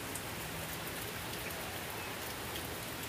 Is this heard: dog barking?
no